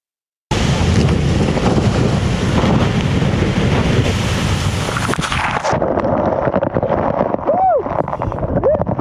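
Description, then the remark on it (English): A loud roar of surging water and crashing ice as a glacier ice bridge collapses in Alaska, shooting a horizontal geyser of ice-cold water at two kayakers, fills the first half, then eases into churning, turbulent water with brief voices calling out near the end. “The bridge collapse shoots a horizontal geyser of ice-cold water right at them.”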